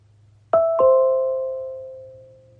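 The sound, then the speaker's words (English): A two-tone doorbell chime played through Apple HomePod smart speakers throughout a house, set off by pressing the ringer button of a video doorbell at the front door: two bright strikes a quarter second apart, then a long, clean ringing decay that fades slowly over a low background hum. “That chime that you heard went off on all the different HomePods throughout my house.”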